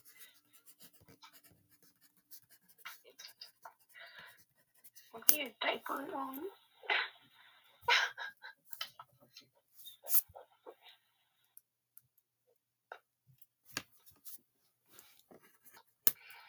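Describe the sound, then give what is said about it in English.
Dry scratching of pencils on paper in quick irregular strokes as people draw Squidward in a timed drawing challenge, pausing and resuming, with brief bursts of voices and other noises breaking in partway through. “Put the pencils down.”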